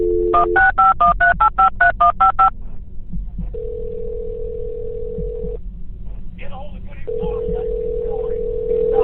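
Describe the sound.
Wabasha County dispatch phones Goodhue County to request more help after an officer shooting in Lake City: a rapid run of about ten dual-tone keypad beeps dials the number, followed by a steady ringback tone, some faint muffled voice, then the tone again over a low background hum.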